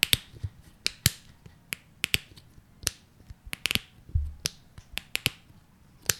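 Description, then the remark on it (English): The plastic top of a Dawn dish detergent bottle is popped open and shut again and again, giving a fast, irregular run of sharp clicks and snaps with no talking. “So it is the top pop of a Dawn dish detergent.”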